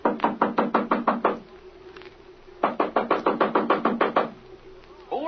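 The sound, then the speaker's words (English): Two bursts of rapid, firm knocking on a wooden door at night, about eight raps each, separated by a short quiet pause with faint background hum; the knocks are fairly loud. “Knock on that door there,”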